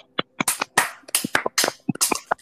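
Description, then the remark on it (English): A few people clap raggedly and out of sync for a player eliminated from a quiz game, sharp uneven claps scattered over a couple of seconds with some louder hissy bursts, thin and unenthusiastic rather than full applause. “Bad sounding applause I've ever heard.”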